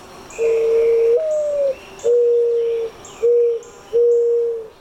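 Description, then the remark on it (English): A mourning dove's plaintive cooing: a rising, drawn-out first note followed by three steady, hollow coos, mellow and clear against a quiet background, with no voices. “And one that I've been paying a lot of attention to is the mourning dove, which has this beautiful sort of plaintive cooing.”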